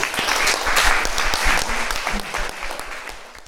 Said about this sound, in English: And yeah, thank you again, everyone, so much for coming today. And round of applause.